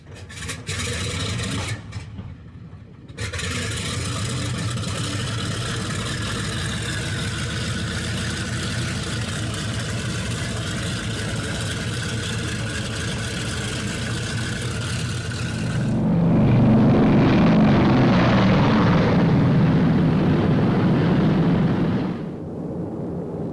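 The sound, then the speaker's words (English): Heavy propeller engines of about 500 B-29 bombers flying from the Marianas toward Japan on May 14th, 1945, to bomb the Mitsubishi ball bearing plant in Nagoya, roar steadily and loudly, a dense mechanical drone with strong harmonic hum, swelling into a deeper, rumbling surge near the end. “From their bases in the Marianas, 500 B-29s fly engines screaming toward Japan.”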